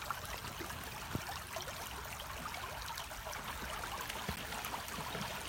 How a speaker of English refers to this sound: You walk up, stand on the bank of the gently flowing stream.